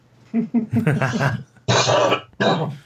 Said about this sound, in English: I've had this cough for a while. It's not. I had it before Corona, so it's not.